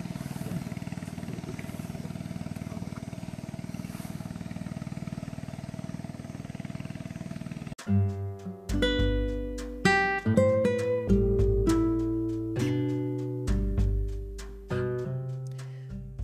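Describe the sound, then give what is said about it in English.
A boat motor drones steadily for about eight seconds, a low, even rumble with a faint engine hum on top, as the boat carries passengers out of the Amazon rainforest, before it cuts off abruptly and music with sustained, shifting notes takes over. “As we leave Amazonian rainforest, I want you to immerse in the situation with me and listen to the sound of the bark taking us out.”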